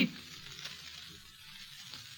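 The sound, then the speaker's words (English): Steady crackling sizzle of bacon frying in a pan, a dense hiss of tiny pops running continuously without pause, fairly quiet and with no voices. “Bacon sizzling, coffee perking, dishes clinking, and, if you're lucky, a new sound.”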